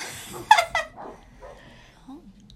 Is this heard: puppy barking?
yes